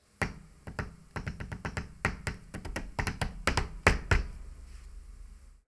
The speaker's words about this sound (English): He spins around in one direction, then taps his fingers on the desk a few times, and then spins around in the other direction and repeats the finger tap rhythm on the desk.